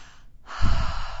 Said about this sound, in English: Now, for those of you at home who can't see... She was breathing in through her mouth and then also out through her mouth.